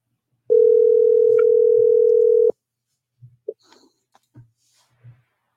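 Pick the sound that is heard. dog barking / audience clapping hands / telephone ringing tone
telephone ringing tone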